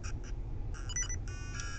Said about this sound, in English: Okay. Let's break these jars and see if they have hearts, because that beeping sound is starting to annoy even me.